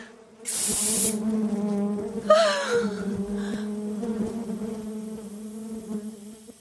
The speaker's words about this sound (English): That's tickling. Bees are in my room. Bees! Are you surprised? Bees!